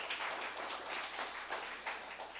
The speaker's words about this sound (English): Now, yeah, you can applaud us.